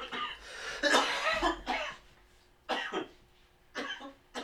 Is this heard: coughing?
yes